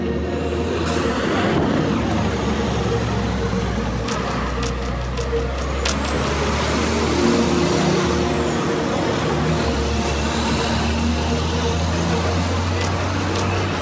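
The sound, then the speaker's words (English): A garbage truck rumbles loudly on a city street in Ottawa, its low engine drone steady throughout, with hissing air brakes, high whines and clanks over background traffic. “The sounds of the garbage truck.”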